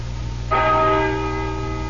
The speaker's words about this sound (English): Listen to that bell. Six. Seven. Eight.